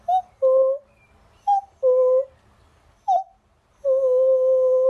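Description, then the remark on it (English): A cuckoo calls three times, each a clear two-note cu-coo with a short higher note falling to a longer, lower one; the final call is drawn out. No talking. “But yes, a cuckoo goes something like this.”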